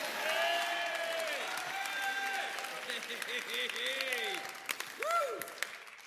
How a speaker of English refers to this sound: Come on, clap your hands, all ye people. Shout unto God with the voice of triumph.